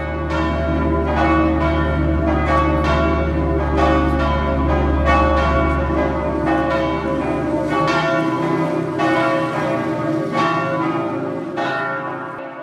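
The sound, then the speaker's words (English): Church bells peal continuously in a loud, reverberant cascade of overlapping strikes, their ringing tones blending into a sustained wash with no talking. “The bells had stopped just after he had gotten snagged, but the sound still reverberated in his mind.”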